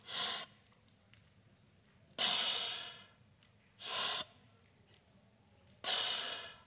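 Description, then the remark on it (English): Slow, steady breathing through a snorkel tube underwater: four hollow, hissing breaths alternating in and out, fairly loud, with quiet pauses between them and no talking. “I love the rhythmic sound of breathing in and breathing out underwater like this.”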